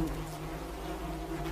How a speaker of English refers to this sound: She was sitting on the gas pump, and the baby wasn't making any noise, like I said, but it was covered in flies, so thick that it looked like it had fur. And the buzzing from the flies, it was...